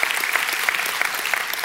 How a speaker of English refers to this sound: God's in the fight. God is in the fight. Yeah, we can clap for that. Let's do it.